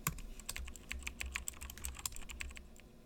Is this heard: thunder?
no